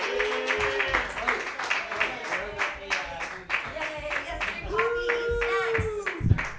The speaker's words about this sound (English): All right, everybody. I am going to do a set, so clap for me. Yay!